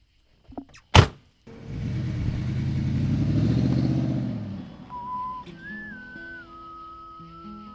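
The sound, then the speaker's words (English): A sharp thud, then a vehicle's low engine rumble swells and fades as it passes, followed by a thin, wavering high whistle over quieter road noise, as traffic slackens at dusk in the Hudson Valley. “The traffic slackened and it's getting dark.”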